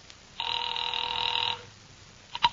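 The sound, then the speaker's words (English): A dial telephone call to Pacific Seaboard Fidelity rings once in a steady, buzzing burst lasting about a second, then falls quiet before a couple of short clicks near the end. No voices are heard. “Mallard left and I took the slip of paper he'd given me with Ayers' phone number on it, sat down by Amici's pet aversion and doodled with the dial.”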